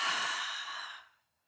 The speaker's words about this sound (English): So breathing in, fill up your air in your belly like a balloon. And then move it up into your chest and exhale.